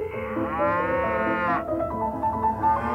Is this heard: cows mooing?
yes